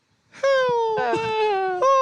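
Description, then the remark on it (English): Truck brakes beside a highway let out a loud, drawn-out squeal that wavers and dips in pitch across a few joined pulses, sounding uncannily like a child crying. “Who replaced that man's break with a quiet crying child? Listen to it. Did anyone else hear that?”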